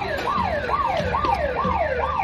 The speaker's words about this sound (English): Yeah, they pulled, like, the store alarm on her.